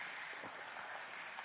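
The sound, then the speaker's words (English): A crowd applauds in a steady, dense wash of clapping that holds at an even level for the whole moment, with no voices rising above it. “All right, go ahead and give them a round of applause just for an incredibleness.”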